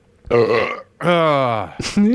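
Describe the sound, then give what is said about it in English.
Two loud, drawn-out burps, each deep and croaky, followed by the brief start of another voiced gulp at the end. “He likes it when I burp.”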